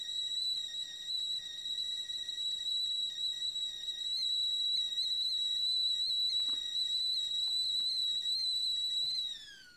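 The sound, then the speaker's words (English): A tea kettle whistles steadily with a sustained high-pitched tone for nearly ten seconds, then the pitch drops and the whistle cuts off abruptly. No one speaks. “So with that, I will say cheers and take a sip of black tea called Kimon, and you will hear the whistle here, the tea kettle whistle at the end.”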